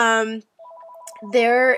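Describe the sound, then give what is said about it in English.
A home landline phone rings with a brief electronic warbling trill, fairly quiet and steady, with a voice speaking just before and after it. “So just ignore that phone call.”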